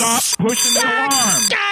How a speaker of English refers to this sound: Listen to me. Stop doing the alarm. Can somebody hear me? Stop pushing the alarm. Okay, stopping the alarm.